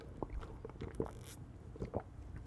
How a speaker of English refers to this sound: All right. I need to sip some more of this coffee right here.